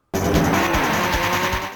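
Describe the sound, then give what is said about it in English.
A loud, continuous engine roar from a car in a Neo Geo arcade racing game, with a series of low popping bursts recurring roughly every half second, like a dump valve venting, when the car is going quite quickly. “This is popping noise when you're going quite quickly.”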